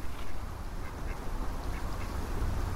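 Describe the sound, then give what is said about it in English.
Ducks quack in short, scattered bursts at a pond on a cold, still day, over a steady outdoor rumble, several calls overlapping across a few seconds with no voices present. “you see sort of frustrated ducks standing on it, wondering where the water's gone”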